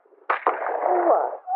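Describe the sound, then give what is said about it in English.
Two sharp gunshots crack in quick succession in a quiet community in Tasmania, Australia, followed by a long, rumbling echo that slowly fades, with a brief tonal sound at the very end. “Gunshots. I'm pretty sure someone's got a gun.”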